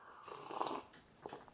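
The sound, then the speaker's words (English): A soft slurping sip of tea lasting about half a second, followed by a couple of brief, quieter gulping sounds. No one speaks. “Yes, sip of tea.”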